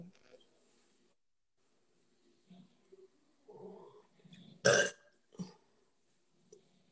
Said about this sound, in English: I burped in case anybody was wondering. I said I burped in case anybody was wondering.